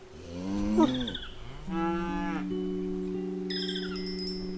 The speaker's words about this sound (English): You must be Mikhail's cows, right?